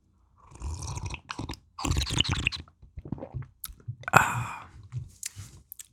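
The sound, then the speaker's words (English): Intimate sips of hot tea: a series of wet slurps and gulps with soft mouth noises between them, one sharper slurp near the end, and no talking. “Yeah, let me take another sip of my tea.”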